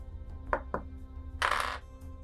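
Real dice clatter onto a hard table: a couple of sharp clicks, then a brief rattling tumble and a faint final tap, over a low steady hum; the roll comes up 69.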